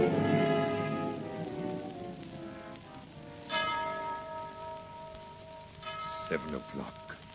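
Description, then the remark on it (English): A clock bell strikes seven o'clock in slow, measured strokes, each deep ringing tone humming on and fading before the next. Some brief higher sounds cut in near the end. “Seven o'clock. Less than an hour to go.”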